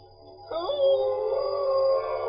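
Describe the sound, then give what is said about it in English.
A male actor lets out a long, imitated animal howl, rising quickly and then holding a steady, loud wavering tone for almost two seconds over a faint low hum. “And then he had to howl, and it wasn't. It's not a bad howl.”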